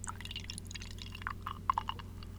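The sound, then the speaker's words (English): Beer from Stone brewery pours into a glass, a steady liquid stream with bright bubbly gurgles and a few sharper glugs near the end, with no talking over it. “Oh yeah, pour me some, please.”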